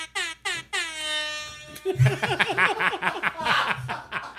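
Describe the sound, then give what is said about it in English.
A Jamaican air horn blares: two quick toots and then one long, loud sustained blast, followed right away by a stretch of chuckling and laughter. “That is the best use of the Jamaican air horn I think I have ever had on the show.”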